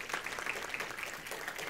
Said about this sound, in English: That was 27 years ago, and so we're thankful for those 27 years. Yeah, we can clap for that.